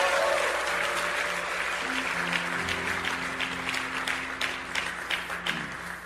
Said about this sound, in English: Let's give our sister a hand unto the Lord.